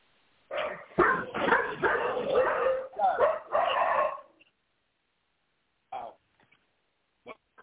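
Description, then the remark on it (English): Dogs bark in a rapid, overlapping flurry for several seconds, then fall quiet before two or three short, isolated barks follow. No one talks. “I clearly, too, am in the witness protection program. They just gave me dogs.”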